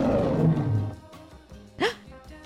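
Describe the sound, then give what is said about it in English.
A loud, growling lion roar fills the first second, then tapers into softer rumbling, with a short rising cry near the end. “Now give me your loudest roar again.”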